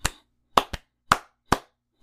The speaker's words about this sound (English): Like, he's about to talk Japanese. He's like, I don't think these people understand me. I'm going to talk in their language, and then he proceeds to clap like.